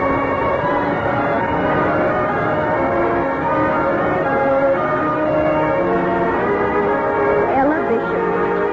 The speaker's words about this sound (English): I remember the excitement of hearing the school bell.